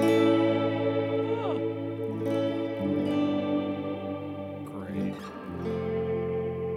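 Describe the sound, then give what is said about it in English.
A guitar played through a Mr. Black Eterna reverb pedal, made in Portland, Oregon, is drenched in lush reverb and plays sustained, washy chords that shift twice, with swooping pitch glides rising through the shimmering tail. It sounds steady and fairly loud, and no one speaks. “It's a reverb pedal.”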